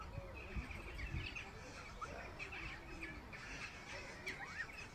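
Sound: seagull squawking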